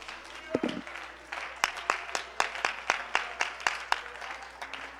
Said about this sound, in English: Oh, would you clap your hands to the Lord here right now?